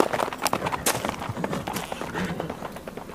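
Rapid hoofbeats of a horse being ridden away at a gallop, a quick irregular clatter of hooves on the ground that stays fairly steady over a few seconds, with faint background noise.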